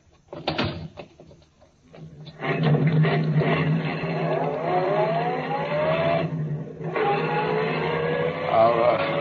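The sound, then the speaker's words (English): A car door thuds shut, then an engine roars to life and revs up as the car pulls away. Its pitch climbs, dips briefly as it shifts gear, then climbs again, loud. “get in the car. I'll drive”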